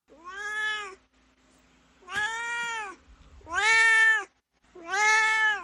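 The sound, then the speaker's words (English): A cat named Dorothy meows four times in a row, each cry long and drawn out with short pauses between, clear and growing slightly louder, with no one talking. “We're moving to Dorothy's Corner, where my cat Dorothy gets to share his opinions.”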